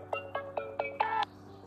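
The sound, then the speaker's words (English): A phone rings with an electronic ringtone: four short, evenly spaced beeping notes followed by a longer held tone, clear over a low background hum, with no talking. “Just got a phone call. Ignore that shit, man.”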